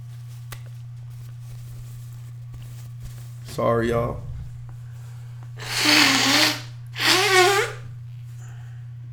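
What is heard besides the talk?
nose blowing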